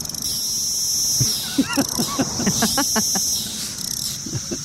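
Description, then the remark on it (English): Cicadas drone in a steady, high-pitched buzz that runs the whole time, swelling slightly in places, with a scatter of short chirps and clicks breaking through in the middle. “The cicadas must be coming back.”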